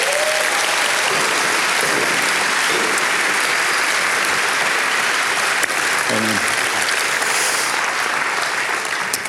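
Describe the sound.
Sustained audience applause at a steady, loud level for several seconds, a dense wash of clapping hands with faint cheers or voices briefly rising within it, welcoming a man invited onto the stage to tell his story.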